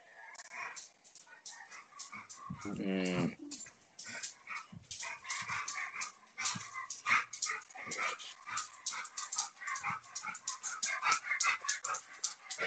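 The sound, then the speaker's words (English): A small dog runs in circles chasing its tail, yipping, whining and panting excitedly, with a drawn-out rising whine near the start and a busy, continuous scramble of yelps throughout. “Is your dog running around in circles chasing its tail?”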